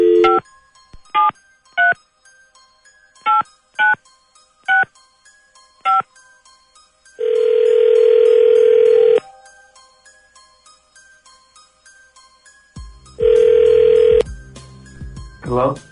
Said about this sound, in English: All right, here we go. Dialing at random.